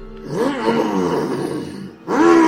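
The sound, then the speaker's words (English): Someone vocally imitates the engine of a bright red, freshly shining motorcycle heard off in the distance as it pulls up: a loud, buzzing, throaty drone that wavers up and down in pitch for about two seconds, pauses briefly, then revs up again. “And, a motorcycle, bright red, still shining as though it has just gotten a wax job, pulls up near you guys”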